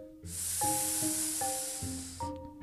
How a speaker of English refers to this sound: Suddenly they heard a scary sound coming from the darkness on the other side of the room. A cold reptilian hiss.